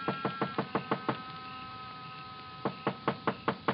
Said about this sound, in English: But in the hope he might be asleep in his little apartment up above, I knocked.